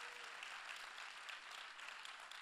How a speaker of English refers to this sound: we have a rule. If one person claps, everybody got to clap.